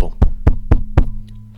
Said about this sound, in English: I think that'll sound like a door knocking.